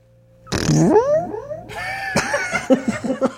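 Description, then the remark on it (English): Someone blows a loud, drawn-out raspberry into a microphone with an echo effect, imitating a fart, with a wavering, echoey tail, followed by a series of shorter sputtering bursts. “Make your best fart noise into the mic with this echo.”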